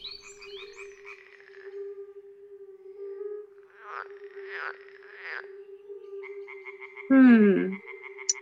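Frogs croak in repeated pulsing bursts over a steady low drone, with one loud croak near the end standing out from the quieter chorus.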